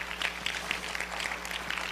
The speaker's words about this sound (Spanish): ¿Puede usted regalar un aplauso a Dios por eso?